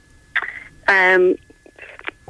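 A loud electronic lifeboat pager alert or test tone from a phone blares for about half a second, a steady buzzy tone that stands out clearly, with fainter short sounds just before and after it.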